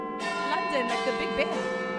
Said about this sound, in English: Listen to the first sound. This is a clock.